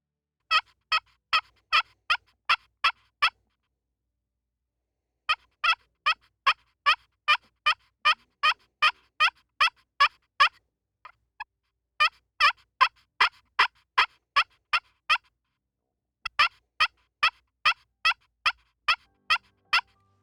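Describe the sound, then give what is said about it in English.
A slate turkey call, a crystal plate with a wood resonator on the bottom, imitates a hen looking for a tom with crisp, rhythmic yelps. It is played in four separate runs of rapid, evenly spaced notes with short pauses between them. It sounds clear, with no talking. “Here's what a slate call sounds like.”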